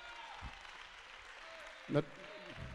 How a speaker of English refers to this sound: If you're going to lead me anywhere, you need to make a sacrifice unto God Almighty, because he's worthy to be praised. Somebody give him a hand clap of praise.